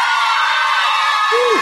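An audience in Los Angeles at a Harry Potter event cheers in answer to whether Harry is not a Horcrux, a loud, steady roar of many voices throughout, with one rising-and-falling whoop standing out just before the end.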